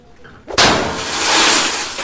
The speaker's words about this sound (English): Takes a snow globe, smashes it through the vending machine to get, well, free Doritos.